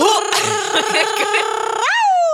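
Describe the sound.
A person vocally imitates a dog barking with a loud, strained voiced sound, held for a couple of seconds and ending in a sharp upward yelp.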